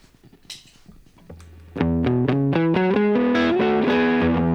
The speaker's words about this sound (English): So that's like me putting a fuzz pedal into a deluxe reverb. I mean, yeah, it doesn't sound that sweet.